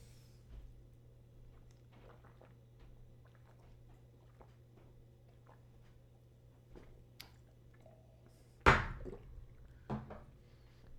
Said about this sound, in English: Are we doing this? Okay. Are you going? I'm going to drink the whole thing.